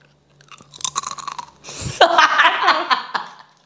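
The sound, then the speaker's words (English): Someone crunches a crisp, cheesy snack as an ASMR attempt: a quick series of sharp crackly bites followed by a louder, denser stretch of crunchy chewing. “But, I like that crispy sound, but not the, like, chomp chomp.”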